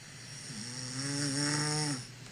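A person snores once, a drawn-out, tonal, almost whistling inhale lasting a couple of seconds, heard close up over a faint hiss with no talking.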